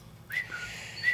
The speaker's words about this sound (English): There's a bird living in our bathroom. His name is Billy or Little Billy. Little Billy or Potato. Potato.